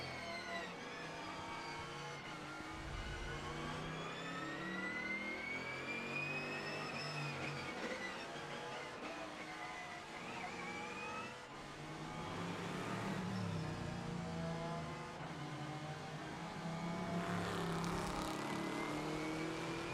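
A race car engine roars, heard from onboard the Rebel car during a race, its pitch climbing and dropping repeatedly through gear changes as it revs hard, loud and continuous throughout.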